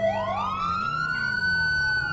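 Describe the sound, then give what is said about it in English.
The siren of an AI-driven Los Santos police car wails loud, its tone sweeping upward and holding high over a low engine rumble, with no voices present. “That's a Los Santos police car!”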